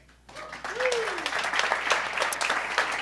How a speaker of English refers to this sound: So, like, much love from all of us at Tamper Tantrum. We really appreciate all that, and a huge round of applause for the speakers.